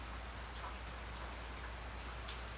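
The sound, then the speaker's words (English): Steady rain pattering down, a continuous soft hiss with scattered drops tapping on a surface, heard alone with no voices and a low hum underneath. “Anyways, now it's raining. I'm sure you could hear it.”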